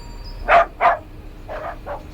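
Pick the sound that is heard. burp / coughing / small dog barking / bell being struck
small dog barking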